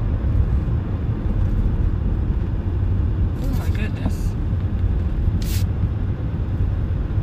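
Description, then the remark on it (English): A car's low, steady engine rumble drones outside for the whole stretch, with a short exclamation from a voice and a couple of brief hissing bursts over it. “I don't know whose car that is.”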